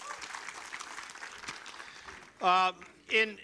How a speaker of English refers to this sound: One more applaud, and you can be seated. Thank you.